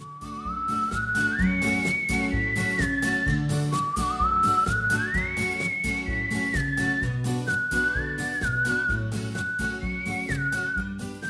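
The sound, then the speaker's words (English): People whistle a clear melody along with a theme song, the whistling rising, holding and sliding between notes over the steady, full backing tune that continues throughout with no talking. “We were just trying to whistle along with the theme song, which we won't keep in because it was like I think I'm not a terrible whistler, but when you like whistle to the microphone”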